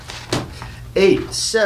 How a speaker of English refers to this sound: Jimmy exits and slams the door.